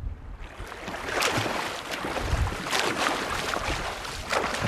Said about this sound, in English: And it's what's out of the water is getting the wind chill. But the water itself is quite nice, but I think that there's so much wind here today.